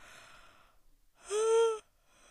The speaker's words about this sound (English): I cannot stop yawning today.